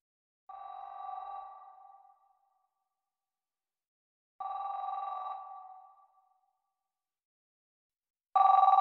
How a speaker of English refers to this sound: I know when we got the call. 12:58 a.m. I heard the house phone ring, and then his cell phone in the bedroom rang